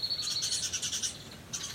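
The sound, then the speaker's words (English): Several birds chatter and call noisily back in the bush, a dense, overlapping racket of high chirps and trills that carries on without pause, fairly loud. “And there's some other birds making a racket back in the bush as well.”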